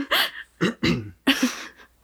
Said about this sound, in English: Excuse me. Look at those levels. Yeah, spiked. We can see our levels on the screen. And now there's no question that my mouth sound clearing my voice was obnoxious.